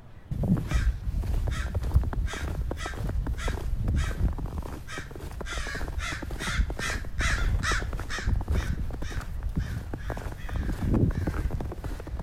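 A noisy flock of crows in a field caws over and over in overlapping, harsh bursts as they jump around something on the ground, a steady agitated racket with no break, set against a low rumbling outdoor background.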